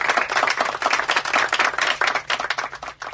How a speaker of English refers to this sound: So we got to get a hand clap of applause for that, because he's doing a pretty hands-down, smack-dab good job.